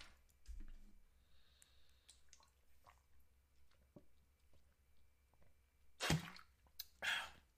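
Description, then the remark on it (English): Someone chugs a drink of water with vitamin C in it: quiet wet mouth clicks and small squishes, then a few louder swallowing bursts near the end, with no talking. “As I just chug all that water with vitamin C in it.”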